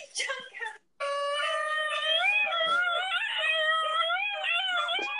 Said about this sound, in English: That's the yodeling dog. Can we turn it off? Jesus Christ. It's the video of the yodeling dog. I mean, it's not really a yodel, it's more of a whine. That was definitely a whining, screaming, annoying sound.